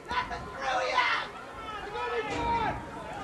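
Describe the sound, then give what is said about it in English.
Excited Wayne football fans yell and cheer together in the final seconds of the fourth quarter of a playoff game, a dense blend of overlapping raised voices with a few higher shouts rising above the steady crowd noise for about three seconds. “Got some excited Wayne fans still yelling here.”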